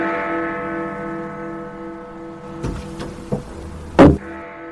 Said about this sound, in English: Hit the bell!